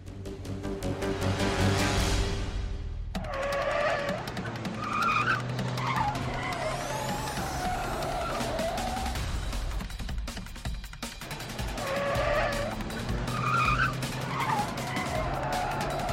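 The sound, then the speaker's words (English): A car engine roars at high revs while tires skid and squeal in long, wavering shrieks, the loud screeching rising and falling over a steady low rumble for the whole stretch. “Virat jumped in and started the car. The engine came alive without hesitation, and Virat was soon in hot pursuit”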